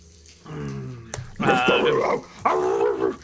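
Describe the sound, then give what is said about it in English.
A person's voice imitates snarling, dog-like gnoll barks, as a character echoing gnoll sounds down a hallway: a lower, softer growl followed by two loud, strained, yelping barks with a pitched harmonic edge, separated by short pauses. “Rhyme starts, like, echoing gnoll sounds down the hallway.”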